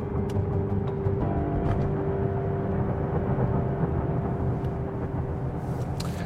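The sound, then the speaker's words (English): Steady low rumble of a car in motion heard from inside, on the way to the Roseville Police Department in Roseville, Michigan, with constant road and engine drone, a faint whine, and occasional light clicks; no one speaks. “So, a few weeks later, I'm in the car heading to Roseville.”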